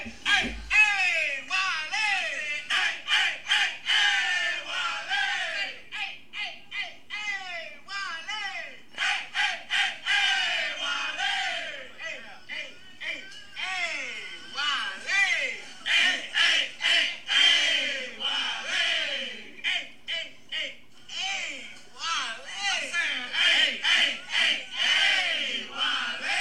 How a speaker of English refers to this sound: Yesterday was move-in day for the fall semester at Wiley College, and the students showed off their enthusiasm with a cheer.